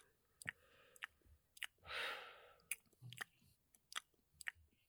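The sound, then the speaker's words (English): Crunchy chewing of popcorn with irregular sharp bites and clicks, plus one longer breathy rustle partway through, all fairly quiet with no talking. “Please, can you not chew? Swallow like his peel, or do not eat popcorn in my presence.”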